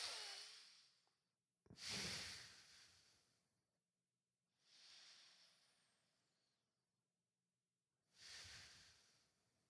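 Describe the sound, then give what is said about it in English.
Slow, deep breaths drawn in during meditation while counting, four soft airy swells spaced a couple of seconds apart, with quiet pauses between them and no talking. “And as I'm breathing in, I'm counting.”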